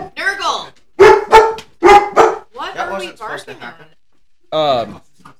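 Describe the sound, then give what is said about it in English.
A dog barks loudly, a quick series of sharp barks broken by higher, whiny yips, then a last bark after a short pause. “What that are we barking at?”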